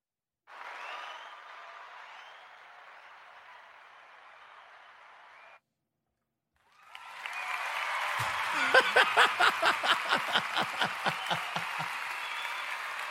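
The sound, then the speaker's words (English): Two bursts of golf-clap applause separated by a brief silence: a steady hiss of clapping, then a fuller round that settles into a regular, rhythmic beat of claps before fading. “Let's do a golf clap for that one.”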